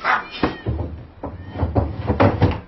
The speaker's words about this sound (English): Blasted cats! Stop it! Get out of here!